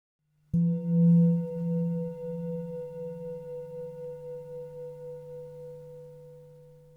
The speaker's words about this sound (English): At the sound of the bell, please feel free to pause all activities and come into stillness.